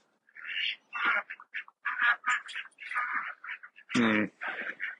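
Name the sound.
duck quacking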